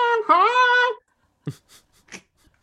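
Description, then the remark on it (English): A voice imitates a squeezed horse: a strained, high, wavering squeal lasting about a second, then a few short breathy huffs trailing into quiet. “Man, that's what they sound like when you squeeze them.”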